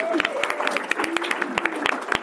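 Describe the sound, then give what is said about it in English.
A small group applauds, with sharp, uneven claps rattling steadily for a couple of seconds while faint voices and murmurs carry underneath. “A round every of applause.”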